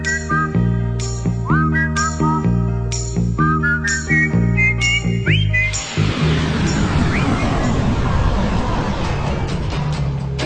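A jaunty 1960s novelty pop record with a bright whistled melody riding over bouncy band backing, then the arrangement swells into a fuller, busier instrumental section. No one speaks.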